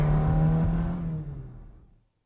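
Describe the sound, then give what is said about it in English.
A car engine roars loudly as the driver speeds off, nearly hitting a woman with a pram, then recedes, its low growl thinning and fading into silence within about two seconds. No voices are heard. “Shut up and drive. Watch that woman. Look! The pram! Christ! You nearly killed us!”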